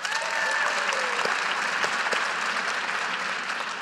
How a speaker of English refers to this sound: The level of admiration I have for everybody who just clapped, it's hard.